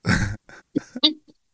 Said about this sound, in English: Who won? The cough is winning right now.